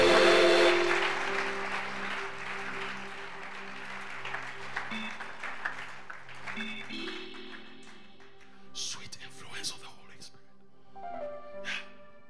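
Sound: audience clapping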